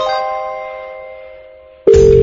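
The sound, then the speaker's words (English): A fading, ringing tone dies away, then a loud, steady telephone dial tone cuts in abruptly and holds at one pitch, as a quick phone call is about to be made live on Talk Radio's late-night show. No one speaks. “I just need to make a quick phone call.”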